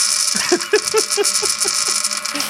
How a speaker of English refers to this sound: I know people would pay to listen to me fart.